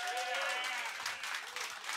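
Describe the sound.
A live audience breaks into steady applause, dense clapping with a few voices cheering and whooping on top, sustained at even volume throughout, voting by noise for Justin Fields to be the Bears' quarterback next year.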